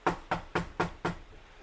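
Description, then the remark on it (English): Five firm, evenly spaced knocks on a hotel room door, fairly loud, in a quick steady rhythm with no voices. “I'm going to go knock on a few doors and see what I can do.”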